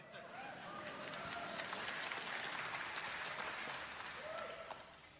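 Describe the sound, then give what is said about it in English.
A church audience bursts into sustained applause during a sermon, after the preacher says Satan is defeated: many hands clapping in a dense, steady wash that swells quickly and holds at a loud, even level for several seconds before easing slightly. “That would be the appropriate place to clap.”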